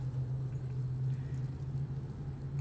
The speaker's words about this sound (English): This traffic is kind of crazy. You know?